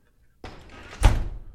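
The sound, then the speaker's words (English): Doors are flung open to interrupt a wedding, with a scraping rush that builds into a loud, heavy slam and a booming thud, then a rumbling tail as they settle. “How did you slam those doors open?”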